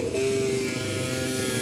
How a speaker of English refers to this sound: Walking towards a Petronas car, which is now firing up, which is great. Great for audio quality, but we'll do our best.